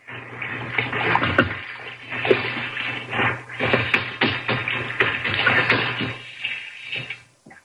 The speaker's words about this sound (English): There's the sink. Some hot water. There, that's it. Wash rag around the sink bowl.